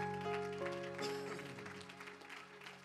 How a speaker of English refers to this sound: Come on, let's give Jesus a hand clap of praise.